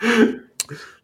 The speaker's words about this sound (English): I have been sick the last few days, so I'm still prone to coughing. So apologies in advance.